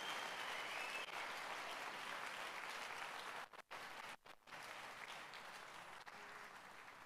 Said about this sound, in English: Clap your hands for the Lord, everybody.